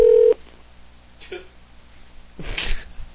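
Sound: telephone number being dialed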